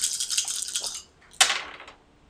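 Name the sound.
dice being rolled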